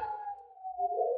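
Wolves howl in a long, steady, mournful tone, joined near the end by a second overlapping howl. The sound is fairly quiet, with no talking.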